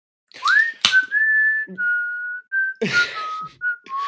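A person whistles a short tune: a rising swoop, then a string of held notes at shifting pitches, broken by a few breathy, noisy bursts between phrases.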